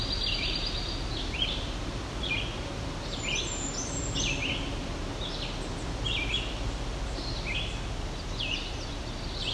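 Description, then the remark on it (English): Indigo bunting song at the pine loop, a stand of what looks to be red pine, heard just before a pine warbler: short, high, sweet phrases in a quick series, some notes in pairs, faint over a steady rushing background noise, with no one talking. “Sounds like there was an indigo bunting in the background too.”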